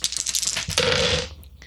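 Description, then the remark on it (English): Dice clatter across a hard tabletop, a quick run of rattling clicks followed by a brief louder tumble as they settle, fairly loud with no voices. “So that's a node of four plus the computer dice.”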